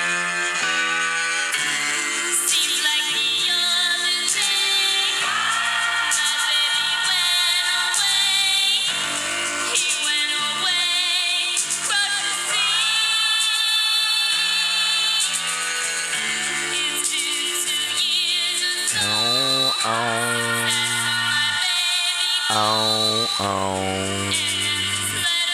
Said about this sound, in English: No, but I could probably play it for you. Nobody wants to hear you play stuff on your phone.